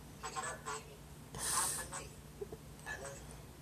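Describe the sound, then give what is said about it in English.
A telephone rings in a series of short, bright electronic bursts, repeating about every second and a half at moderate volume over a low background hum. “It's still ringing.”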